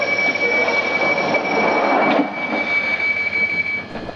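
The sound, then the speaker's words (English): A London subway train rumbles loudly and steadily, with a thin high-pitched whine running over the noise as it pulls away from the platform. No one speaks. “So the guy only records subway sounds.”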